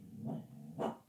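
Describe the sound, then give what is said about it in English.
A dog named Murphy, barking at a window, gives two gruff barks about half a second apart, the second sharper and louder, with a low growly edge; no one speaks. “Get down from the window. You're causing a disturbance. And I can hear you on the microphone.”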